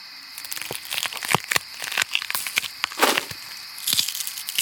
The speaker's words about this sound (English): She could hear her footsteps walking on the leaves. At first, it scared her because it sounded like it was coming from behind her.